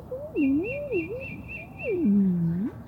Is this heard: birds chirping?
yes